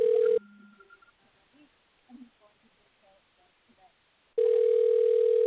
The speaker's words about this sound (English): Well, I thought I hung up. Come on. Quit ringing.